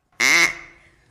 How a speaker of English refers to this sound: Oh, there's a duck in here. That's great.